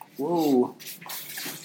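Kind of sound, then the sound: household object, water running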